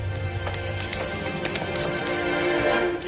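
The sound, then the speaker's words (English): Coins clatter and scatter across a hard floor as money changers' tables are overturned, a burst of bright metallic clinks and scattered taps that rattle on for a few seconds, with no voices. “He overturned the tables of the money changers. Scattered their coins.”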